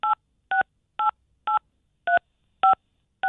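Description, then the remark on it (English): A series of seven short, clear phone keypad tones beep one after another at a fairly steady, slightly irregular pace, each a brief dual-pitched touch-tone with silence between, as a caller accidentally dials the phone with her cheek. “I think she's cheek dialing the phone.”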